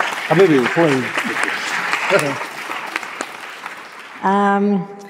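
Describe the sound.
An audience at a literary event claps steadily for several seconds for an introduced author, a dense patter of hands with voices calling out over it, ending with a loud, sustained whoop or shout near the close.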